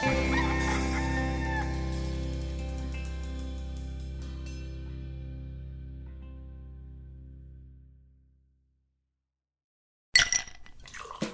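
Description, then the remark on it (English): A long, resonant musical tone slowly fades into silence, then a loud rooster crow bursts in near the end and is cut off. “Wake Up Call, ideas that crow.”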